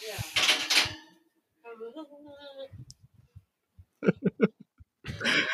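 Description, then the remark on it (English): A person vocally imitates sled dogs howling, producing drawn-out wavering yelps followed by a few short rhythmic barking bursts, with breathy noisy sounds at the start and end. “making fun of the dog skis”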